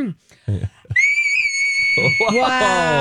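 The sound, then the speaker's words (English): A piercing, very high whistle-register vocal note is held steadily for over a second, loud and thin, after a few brief voice sounds; other voices then start talking over its end. “Did that come from your mouth or the computer? That was from my mouth.”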